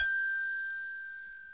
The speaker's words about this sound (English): In fact, if you need to talk, I'll just give you the hotel bell.